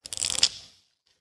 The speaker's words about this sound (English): All right, so here we go. I'm gonna shuffle the cards.